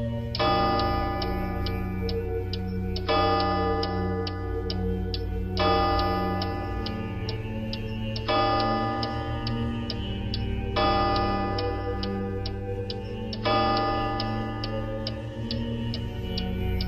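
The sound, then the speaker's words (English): A clock in a house chimes six times, each deep, resonant strike ringing out and fading into the next at a slow, steady pace, with a faint ticking running underneath. No voices. “I reached out to touch the clock, and it chimed again.”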